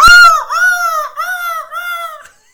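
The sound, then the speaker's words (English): A loud seagull call: a series of harsh, nasal cries running together in quick succession with no pauses between them, heard on its own with no one speaking. “Seagull!”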